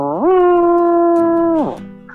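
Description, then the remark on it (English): A horn is blown in one loud, sustained note that swoops up, holds steady for over a second, then sags away, sounding like a mournful, sick elk call. “let's hear your horn”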